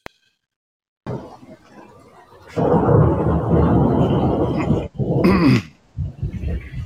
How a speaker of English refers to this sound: can you hear the storm we got over right now? I heard it. It passed here already, where we were.